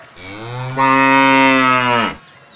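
A single loud, drawn-out cow moo lasting about two seconds, rich and droning, rising slightly in strength partway through before cutting off, with no talking.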